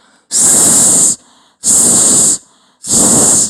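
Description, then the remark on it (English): A voice makes three loud, drawn-out hissing sounds like a snake, each lasting under a second, evenly spaced with short quiet gaps between them. “Snake. Again.”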